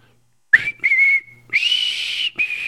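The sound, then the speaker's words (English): A person whistles a short, bright intro tune alone: a few sustained, sliding notes with brief breaks, loud, ending after a couple of seconds. “Isn't that the strongest whistle you've ever heard? Fantasy Fun Time, beautiful whistle intro.”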